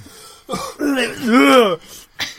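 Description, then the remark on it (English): A loud bout of coughing and throat clearing, several strained, rasping bursts with a groaning voiced edge, followed by a short final hack after a brief pause. “He's gone on too long now. He's got stuck in my throat.”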